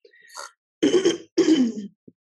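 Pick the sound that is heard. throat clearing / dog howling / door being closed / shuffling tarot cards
throat clearing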